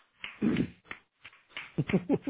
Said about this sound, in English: That was slower clap.